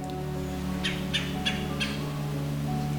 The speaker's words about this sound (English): The red-bellied woodpecker's call is a stuttered guttural call, a sound often made while clinging to the trunk of a large deciduous tree.